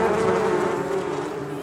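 A steady buzzing of bees hums continuously with a bright droning tone, loud and unbroken for the whole short stretch, with no voices present.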